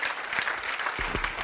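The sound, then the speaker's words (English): A crowd applauds, with steady, dense clapping that stays fairly loud throughout the short stretch, plus a few low thumps near the end. No one speaks over it. “I can't believe that's the best clapping y'all can do.”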